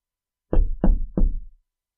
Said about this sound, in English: A knock at the door. But as I run to open it, the door won't open. It's locked from the outside.